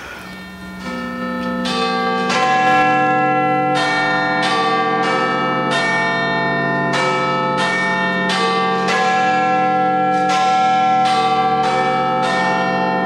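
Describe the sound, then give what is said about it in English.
The large Big Ben clock tower bells in London ring out a chiming melody, a dozen or so loud, evenly paced strikes whose resonant tones overlap and linger, with no voices present. “I want you to hear the chimes. Can we play that audio file? Listen to the chimes.”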